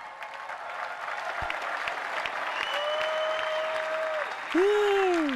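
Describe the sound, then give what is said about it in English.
Sustained audience applause, a dense steady wash of many hands clapping, joined by a rising and falling whistle or cheer toward the end that grows louder in the last second. “Clappity clap clap.”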